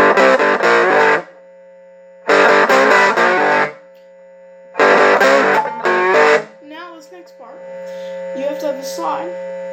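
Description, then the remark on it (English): A distorted electric guitar played through a small 5-watt amplifier plays a chunky, gritty riff in three loud bursts separated by short pauses, then shifts to wavering bent notes over a steady amplifier hum. “I would bend to it, kind of.”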